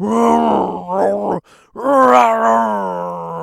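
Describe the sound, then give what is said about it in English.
A voice imitates two bears fighting with loud, drawn-out growling groans, in two long bursts split by a brief silent pause. “what I pictured was two bears fighting like National Geographic”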